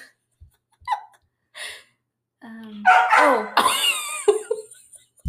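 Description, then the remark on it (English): A dog barks in a cluster of sharp, loud bursts after a few soft knocks and rustles, the barking running together near the end. “My dog just ruined our podcast.”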